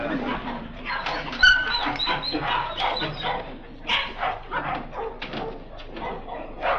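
A dog barks in quick, repeated bursts with whiny whimpers between them, fairly loud, continuing restlessly throughout with no pause for quiet.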